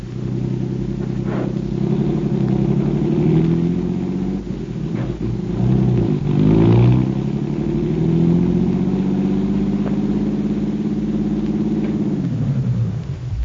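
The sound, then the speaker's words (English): A car engine runs steadily as the car drives to a rooming house on Garfield, its low rumble rising and falling in pitch as it revs and drives along, continuous throughout with no voices. “Okay, my car's downstairs. You're going to direct us to that rooming house on Garfield.”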